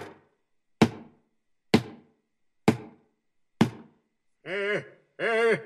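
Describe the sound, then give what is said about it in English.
Four heavy, evenly spaced chopping strikes of tools into wood land about a second apart, each a sharp thunk with a short ringing decay, followed by two brief drawn-out vocal calls. “So they began chopping away one after the other.”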